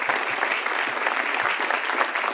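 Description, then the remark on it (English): An audience at a Sunday school gives the teachers a round of applause, clapping steadily in a dense, continuous wash that holds at an even, fairly loud level from start to finish, with no voices coming through. “So in that regard, please let's give a round of applause to the teachers.”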